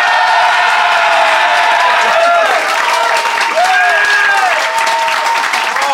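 Dense, sustained applause from a large audience fills the whole stretch, loud and close, with a few cheers and whoops rising through the steady clapping.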